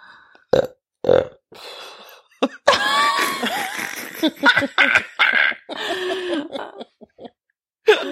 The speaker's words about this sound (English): I can feel a burp coming. Hold on.